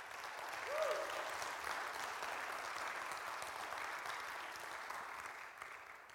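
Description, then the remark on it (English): An audience applauds steadily for about six seconds, a dense, even wash of clapping at a constant level, with a brief whoop or cheer rising near the start. A church audience gives a hand clap of praise for the resurrection during a sermon. “Give him a hand clap of praise for what he's done.”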